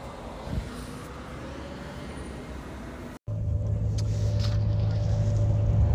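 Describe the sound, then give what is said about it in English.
A bus engine rumbles steadily as passengers board, a low droning hum that briefly cuts out midway, then returns louder and deeper with a constant mechanical tone. “So now we are on the bus.”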